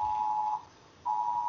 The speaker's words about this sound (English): Sorry, man. Yeah, it's got an Amber alert on her phone, so Amber's lost again.